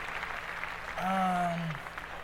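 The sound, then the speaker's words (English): An audience claps in a steady, dense patter for a couple of seconds, with a brief, sustained voiced cheer rising over the applause midway through. “Clap that up.”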